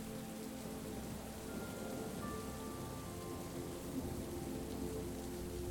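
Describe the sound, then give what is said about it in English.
Steady autumn storm rain pours down in a constant, even wash of noise, drumming softly on a surface with a low rumble underneath, heard from an attic. No voices, just the continuous storm. “It's a mesmerizing sight, contrasting the warmth and coziness of the attic and the wild beauty of the autumn storm.”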